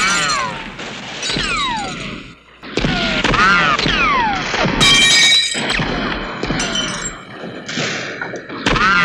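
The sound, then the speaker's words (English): Movie gunshot sound effects from a shootout scene in a church fire again and again in quick succession, the same few gunshot and ricochet sounds reused, each sharp bang trailing into a whining ricochet sweep, loud and dense for several seconds. “Again, the sound design, they have three different ricochet and gunshot sounds, and it's the same ones over and over again.”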